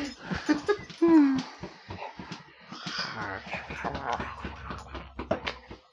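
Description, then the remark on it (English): A puppy whimpers in a few short, high, wavering whines near the start, followed by snuffly breathing and faint voices in the background. “Puppy. Ivor, don't you jump there.”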